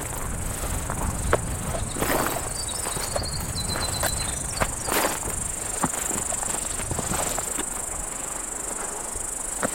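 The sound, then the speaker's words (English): A cicada up in a tree buzzes non-stop in a steady, unbroken high drone for the whole stretch, fairly loud, over a rumbling outdoor background with a few brief faint chirps. “Seems more like a cicada, though. Up a tree. And it's non-stop.”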